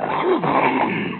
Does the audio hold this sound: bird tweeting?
no